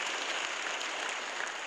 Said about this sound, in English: by letting it be known by saying amen and applause.